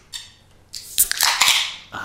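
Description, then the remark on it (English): A short hiss, then a sharper crack and a long, bright fizz of carbonated water, broken by a few small clicks and sips, with no one talking. “Let's all pop one open for the boys.”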